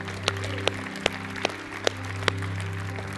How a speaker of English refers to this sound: Let's give him a clap offering of praise.